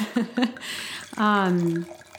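Two quick clinks of glass, then a 100% Cabernet Sauvignon red wine from California is poured into a glass for about a second in a steady stream, its gurgling pitch shifting as the glass fills.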